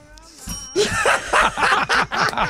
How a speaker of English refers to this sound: They're fighting over the bell now, Rog. The bullshit bell. A lot of bangs on the bullshit bell.